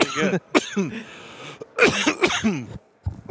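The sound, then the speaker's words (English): Several harsh coughs come in quick bursts, with some throat clearing and hoarse vocal sounds between them, then a short pause before one more brief cough. “Excuse me, I got a cough.”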